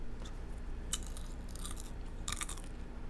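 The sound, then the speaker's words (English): Crunchy popcorn chewing, with bursts of crisp crackling at irregular intervals over a low, steady background hum. No one speaks. “It's all vibrating because it enjoys eating this popcorn”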